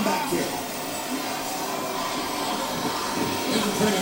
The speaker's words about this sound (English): You can hear this Patterson crowd. Let's go Hardy.